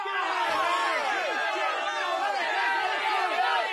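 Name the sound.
people cheering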